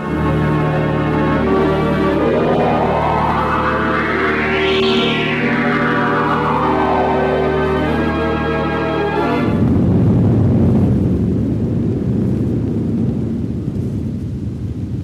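The BBC theatre organ imitates a thunderstorm: sustained chords with a whistling pitch that swoops up and back down like wind, then a loud, deep rumbling thunder crash that rolls on to the end.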